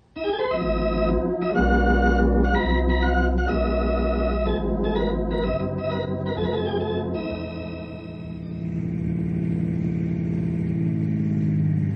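car engine driving

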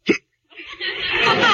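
hiccuping

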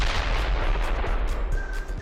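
explosion sound effect

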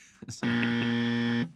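buzzer sound effect

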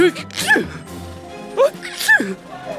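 sneeze

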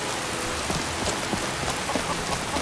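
rain

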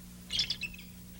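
bald eagle call

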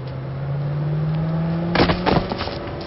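car driving past

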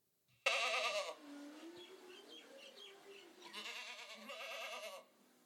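goat bleating

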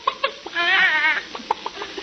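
chicken clucking

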